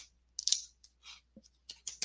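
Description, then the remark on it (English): Sticky tarot cards being shuffled, a run of short, crisp papery snaps and rustles in uneven bursts, with brief quiet gaps between them and no voices; the stickiness comes from the way the cards are cut. “I guess it's not glue, it's just the way they're cut.”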